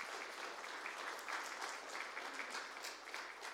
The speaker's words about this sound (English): All right, so give them a big round of applause.